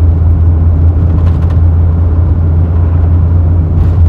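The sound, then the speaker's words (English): Steady low rumble of a car driving along side roads with little traffic, heard from inside with constant engine and tire drone, loud and continuous with no one talking. “I am driving, so it's difficult to reference my notes when there's traffic, but luckily, there is little traffic on these side roads.”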